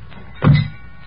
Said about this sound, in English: Okay, heave it in. Slam the doors.